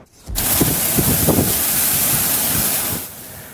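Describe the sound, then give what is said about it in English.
A sudden thunderstorm in Fredericton: heavy rain and strong wind roar in a loud, steady hiss for about three seconds, with low gusty rumbles buffeting underneath and no voices. “A sudden thunderstorm brought severe rain and strong winds that snapped trees and down power lines.”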